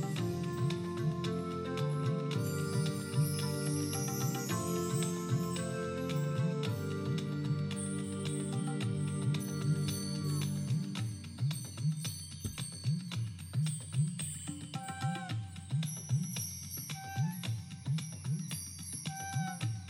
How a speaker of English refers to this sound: And all it is it's a long set of chimes, little small chimes on a board. And let's listen to that. It's used in lots of different effects and things, but it's beautiful. So listen to the chimes.